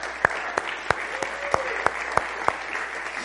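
An audience applauds in a steady, moderately loud round for four people being congratulated, given as another round of applause, with a few sharp individual claps standing out at a regular rhythm above the dense patter of hands. A faint voice briefly rises beneath it.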